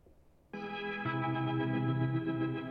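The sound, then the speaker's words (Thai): A sustained guitar chord swells in through an octave reverb pedal, a deeper octave layer joining a moment later, producing a thick, shimmering, organ-like drone that rings out steadily. “มันเป็นออคเทปรีเวิร์บ อ๋อออคเทปรีเวิร์บ ออคเทป หลายออคเทปเลยแหละแล้วเสียง โอ้แบบ แสบหูขนาดนี้เนี่ย โอ้แบบล้ำมากอ่ะ”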